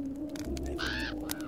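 A raven gives one harsh, rasping caw lasting about half a second, fairly loud, with a steady low hum underneath and a few faint clicks around it.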